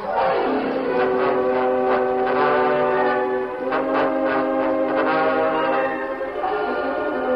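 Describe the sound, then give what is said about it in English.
A steam locomotive pulls away, its whistle sounding a loud, sustained chord for several seconds over the rumble and faint rhythmic chuffing of the engine, without any voices. “When you get finished here, run up front to the engine. We'll uncouple it and use it to get away.”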